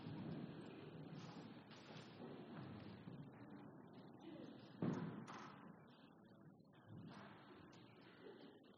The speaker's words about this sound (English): if the guys on the side, if you want to open the doors, I know it is getting quite hot and stuffy in here.